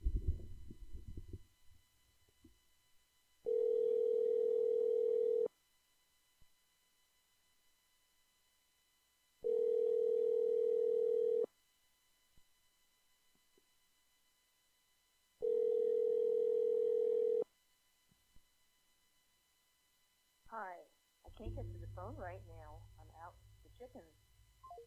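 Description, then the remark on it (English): An outgoing phone call to the caller's mother rings three times, each long steady tone about two seconds with pauses between, and no one answers; a voice starts talking right after the last ring. “My mom didn't pick up the phone.”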